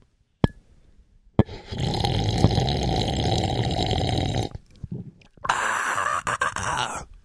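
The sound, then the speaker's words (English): A sharp click, then a long, loud, noisy slurp of coffee lasting a few seconds, followed after a brief pause by a second, hissier slurping sip. No one speaks. “Hold on. We're doing a sip.”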